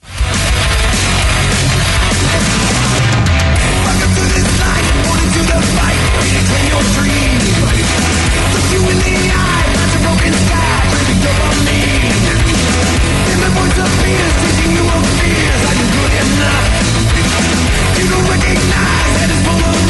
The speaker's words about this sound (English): So yes, the song is called "…," and we got a little bit of it right here.